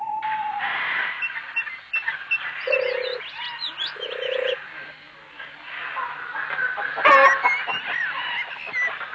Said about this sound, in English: This is one of the many kinds of aviaries that house the various kinds of birds. As you can imagine, there's just no need for an alarm clock on Noah's Ark.